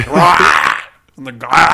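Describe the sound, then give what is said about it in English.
A person growls and roars in imitation of the shark in a movie: a loud, rough, throaty roar, a brief pause, then a second rising growl that swells back to full volume. “The shark at this point growls and roars.”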